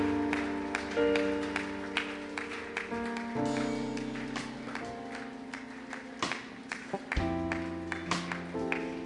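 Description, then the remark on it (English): An audience claps steadily for people coming to the front at a church service, the hand claps mixed with sustained keyboard or organ chords playing throughout, moderately loud and continuous. “Clap for them, please, everyone.”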